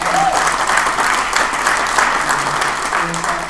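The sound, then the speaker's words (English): An audience claps steadily in a dense, sustained burst of applause for first-time attendees, loud, holding at an even level throughout with faint murmuring voices mixed in underneath. “Round of applause if it's your first time.”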